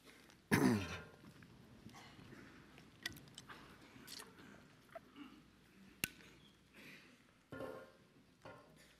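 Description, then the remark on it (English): Scattered throat clearing from several audience members, one loud rasp near the start, then softer coughs and shuffling noises spread through the quiet, with no one talking. “I hear a lot of you clearing your throat, like, come on, get it out.”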